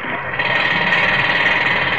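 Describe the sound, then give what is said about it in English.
Pneumatic drills hammer away in a steady, loud, continuous rattle, a dense mechanical clatter that holds constant throughout with no voices. Many men are working the drills on a tremendous scaffold. “Men covered it like ants, working with pneumatic drills, shovels, wheelbarrows.”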